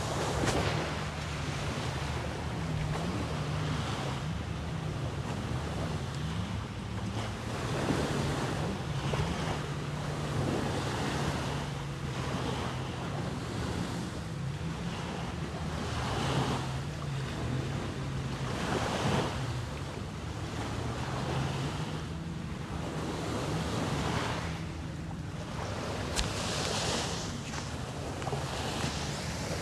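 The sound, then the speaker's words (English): Waves roll in and break onto a sandy shore in steady, overlapping surges, with a constant wash of surf and some wind buffeting the microphone. No one speaks. “I'm going to be quiet as I let you listen to the sounds of the waves crashing into the sand.”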